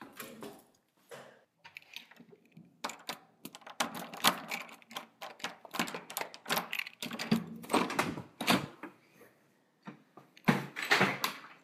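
Footsteps climb a set of stairs, then keys jingle and rattle in a lock as a door is unlocked, a busy series of clicks and clatters with no one talking.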